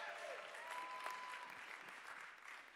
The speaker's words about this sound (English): I don't know if they can watch me, but they may or may not, but can we give them a big hand clap? I know they're not here.